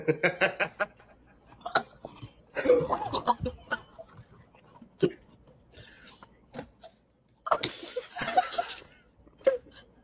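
A loud coughing fit: harsh, raspy coughs arrive in irregular clusters, with short gasping pauses and throaty rasps between the bursts.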